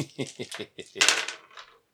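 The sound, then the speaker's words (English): Dice being rolled rattle and clack across a hard surface, starting with a quick series of light clicks and ending in a louder tumbling clatter before settling. “I need more dice in this.”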